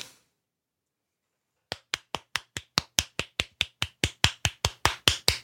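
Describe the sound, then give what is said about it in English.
After a moment of silence, someone claps hands in a steady, brisk rhythm, about seventeen sharp claps, roughly four per second, getting a little louder toward the end, with no voices. “Is that me clapping?”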